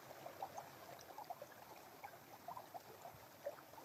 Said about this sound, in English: Hearing the sound of the river, the waters that are running into the forest.